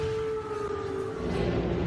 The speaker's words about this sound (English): We saw fighter jets flying over the city this morning as emergency air raid sirens wailed.